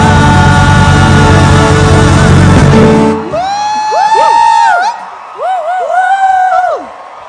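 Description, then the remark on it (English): A worship audience roars loudly in a shout of praise for about three seconds, then the din drops and scattered individual whoops and yells rise and fall over a thinner murmur of cheering. “Man, did you sense the presence of God in that shout?”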